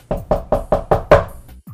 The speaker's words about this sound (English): Sure, let's get this charade over. Let's knock, shall we?